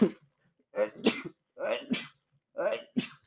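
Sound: sneeze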